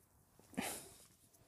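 dogs barking

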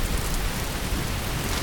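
rain falling

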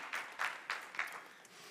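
audience clapping

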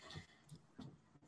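dog whining

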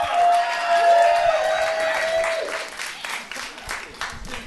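audience clapping and cheering

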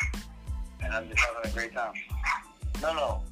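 small Yorkie dog barking

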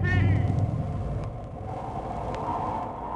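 rain falling

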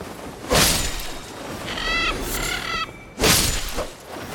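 birds

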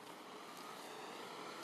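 trucks passing by

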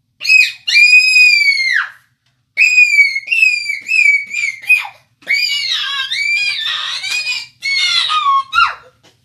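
children screaming

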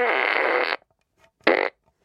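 fart gun sound effect

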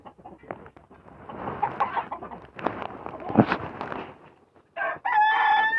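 rooster crowing

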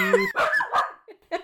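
puppy barking

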